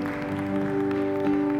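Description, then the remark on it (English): An audience at World Changers Church Houston claps in praise to God in a steady, dense, continuous patter, blended with a loud sustained organ or keyboard chord that holds throughout. “Come on and give God another hand clap of praise.”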